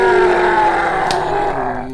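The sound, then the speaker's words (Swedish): A moose lets out a long, sustained roar, a loud droning bellow with rich harmonics that holds steady for about two seconds before fading slightly at the end. “Ett till vrål, kom igen.”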